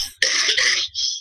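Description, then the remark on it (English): A single harsh, raspy cough bursts out, followed by a short breathy second hack, with no talking over it. “Sorry about the cough, guys.”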